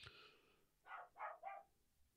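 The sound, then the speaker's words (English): A dog barks three times in quick succession in the living room, the muffled barks evenly spaced and moderately loud, with a faint high whine just before them and no talking. “was nice enough to let it bark in the living room.”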